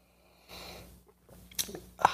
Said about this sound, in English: Fill it with your favorite liquid. I like coffee. And join me now for the unparalleled pleasure, the dopamine hit of the day, the thing that makes everything better. It's called the simultaneous sip. And it happens now. Go.